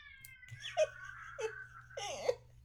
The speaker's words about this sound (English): I have a hangry diabetic cat who is gigantic and has also a very large voice. There's nothing wrong with him. He's just mad about dinner.